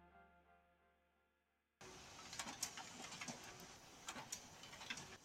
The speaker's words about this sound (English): Oh, I'm sorry. Do you hear my printer in the background? Yes. Oh, I think I only have another 120 more pages.